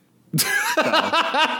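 A harsh burst of coughing: one loud, rough cough followed by four quicker, strained hacks in an uneven rhythm, with no talking.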